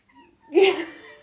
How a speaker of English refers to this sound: Oh, the Bampot cat's hungry. Did you not feed her before we started?